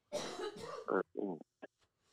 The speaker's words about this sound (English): The intern's coughing.